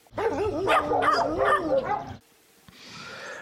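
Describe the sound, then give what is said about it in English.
Dogs whine and yelp in a run of wavering, high-pitched cries with a few sharper bark-like bursts, lasting about two seconds before giving way to a quieter, hissy background. “The dogs are spoiled.”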